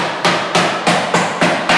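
A mallet pounds a boneless, skinless chicken breast through plastic wrap to make it even, in a steady run of about six heavy blows, evenly spaced, each with a brief ringing smack and no talking.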